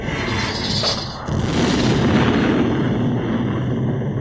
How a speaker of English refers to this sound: You gotta just watch it, like, yeah, this is cool. Fireworks.